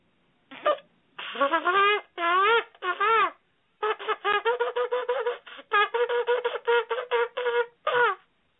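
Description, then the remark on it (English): A ram's horn shofar sounds a short blast, then three longer wavering calls, followed by a rapid run of many short staccato bursts, all bright, buzzy and fairly loud with no talking. “So hopefully you get a sense of what a shofar sounds like.”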